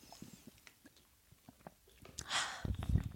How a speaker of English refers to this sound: I have to take a sip of water for this. Hold on.